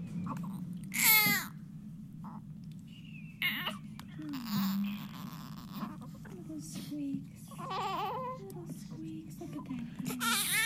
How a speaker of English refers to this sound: I was going to play this soundbite of a baby because of this precious baby that was saved in the womb. So let's just listen to these newborn sounds.